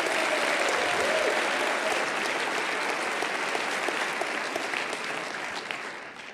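A crowd claps steadily, a dense wash of many hands at fairly constant loudness that eases off slightly toward the end, with no talking over it.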